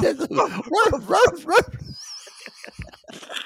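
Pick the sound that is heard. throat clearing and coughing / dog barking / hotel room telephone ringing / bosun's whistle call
dog barking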